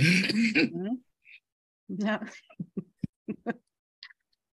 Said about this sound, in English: Sorry, y'all. A little coughing there.